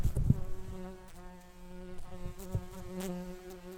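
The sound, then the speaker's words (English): Marked bumblebees buzzing as they are released after being caught and recorded, a steady low droning hum with wavering pitch that swells and fades as they fly off, with a few soft knocks and rustles; no talking. “Right, now that we have recorded everything that we need to on the data sheets, and we've marked the bees, all that's left is to let them go.”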